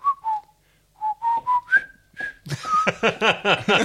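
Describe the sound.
A person stuck in a cell whistles the River Kwai march, a short, jaunty march-like tune of about eight clear notes, fairly loud, before someone starts talking over the end of it.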